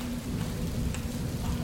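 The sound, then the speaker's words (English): Steady, heavy rain hisses over a deep, continuous rumble of thunder, forming a dense storm wash with one faint drip-like tick near the middle and no voices. “she simply nodded to the screeching wind above and warned that the lights came during the storm.”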